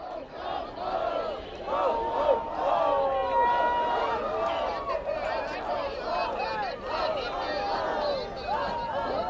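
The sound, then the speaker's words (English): A crowd of about 50 people in various levels of Santa costume shouting ho-ho-ho at SantaCon, dozens of overlapping voices in loud, continuous, uneven chanting that fills the whole stretch without a pause. “that ho-ho-hoing you hear is like 50 people in various levels of dress, sort of looking kind of like Santas.”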